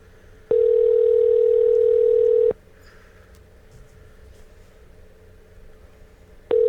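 A telephone ringback tone heard while placing a call: a steady mid-pitched electronic tone lasting about two seconds, a pause of several seconds, then the tone starts again. No one speaks.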